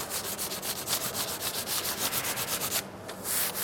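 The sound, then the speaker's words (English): Quick, steady rubbing strokes of charcoal pushed through pricked pounce paper laid on a surface to transfer a repeated pattern or design, a dry scratchy swish repeating several times a second, briefly pausing before resuming. No voices. “We put the pounce on the surface where we need to repeat the pattern or design, and we rub either charcoal or dry pigment paint through.”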